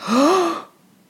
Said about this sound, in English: The whole room erupted in a gasp of horror.